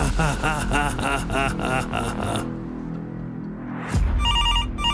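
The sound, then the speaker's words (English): A telephone rings loudly with a call from Sally Noggin in a fast, rhythmic warbling burst, then pauses. A sudden click follows, and a series of electronic beeps repeats at the end. “I'm ringing from Sally Noggin.”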